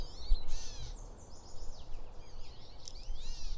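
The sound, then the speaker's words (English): A gray catbird, a medium-sized, long-tailed gray bird with a black cap, gives several nasal, cat-like mewing calls, rising and falling slurs repeated irregularly over a low background rumble, with other faint bird chatter in between. “A medium-sized, long-tailed, stormy gray bird with a black cap and cinnamon undertones.”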